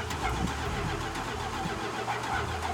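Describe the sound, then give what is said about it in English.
An old truck engine cranks and, after a little while, catches, settling into a rough, steady rumble with a dense low-end drone and no voices. “It took a little bit, but we finally got it started, and I pulled it out into the gravel area, and at that point, it just started pouring out smoke.”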